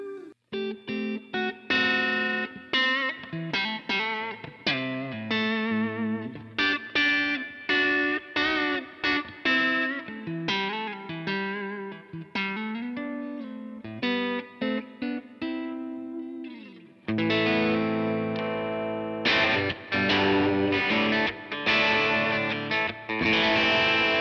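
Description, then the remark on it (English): An electric guitar played through a multi-effects pedal, with rapid picked notes and chords, a distorted, chorused tone, and a long wash of heavy reverb, loud with no talking. “That's a lot of reverb.”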